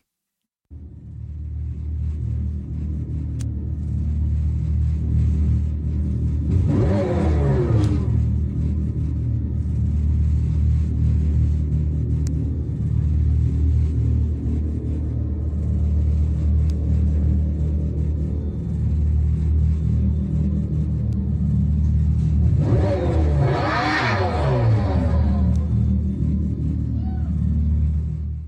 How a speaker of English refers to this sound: This is a Dodge Charger, Daytona SRT electric muscle car with what they're calling a chambered exhaust sound. Don't ask me what that means.